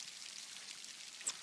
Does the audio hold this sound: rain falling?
yes